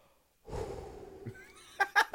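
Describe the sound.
A sharp, hissing inhale sucked in through clenched teeth, followed by a couple of quick breathy catches, fairly loud with no talking.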